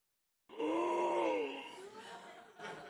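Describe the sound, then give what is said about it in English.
A loud, sudden dramatic group gasp bursts out of silence as a chorus of voiced, shocked "ohh" sounds, swelling briefly and then trailing off into murmuring reactions. “gasps everyone in every cheap knockoff Christmas sequel that's ever been made.”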